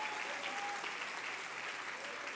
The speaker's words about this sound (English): Come on, clap your hands. Come on, that's worth getting excited over. That's worth shouting about. That's worth rejoicing about.